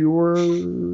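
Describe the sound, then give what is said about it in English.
A single sneeze: a voiced, tonal cry with a burst of sharp hissy air partway through, loud and brief, with no talking over it. “Bless you.”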